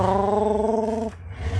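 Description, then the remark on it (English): A Ford truck engine roars through two giant homemade stovepipe exhausts, made from pipes cut at an angle. It holds a loud, steady low-pitched drone for about a second before breaking into a rougher, throbbing rumble. No one speaks. “Oh, no, it's not a motorcycle, it's someone with a Ford truck. He has two giant stovepipes out the back of it.”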